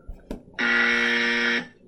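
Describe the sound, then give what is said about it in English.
A single loud electronic quiz buzzer tone, the buzzer of the quiz team Drunk and Ready to Score, sounds for about a second, steady and harsh with rich harmonics, preceded by a couple of brief clicks. “Do we want to play our buzzers so the people at home know who's who when they go on?”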